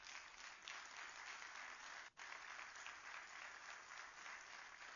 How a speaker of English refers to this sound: Thank you for clapping for the Messiah.